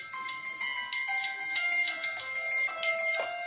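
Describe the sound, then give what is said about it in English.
A phone's electronic ringtone plays alone for an incoming call, a thin, steady melody stepping between bright tones with small rhythmic accents, moderately quiet and continuing throughout. “I think there's a ringing sound coming in, right?”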